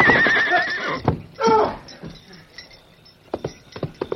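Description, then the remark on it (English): A horse, ridden hard at night over ground studded with gopher holes, whinnies loudly, followed by a heavy thud, a second strained cry, and scattered scuffing knocks as it trips and goes down. “He rode hard, and that was poor judgment when the ground was studded with gopher holes and other irregularities, and the only light came from a thin new moon.”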